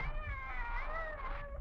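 A cat lets out a single long, wavering yowl at a bushmaster snake, drawn out and tense, rising and falling in pitch over a low background rumble, with no one speaking.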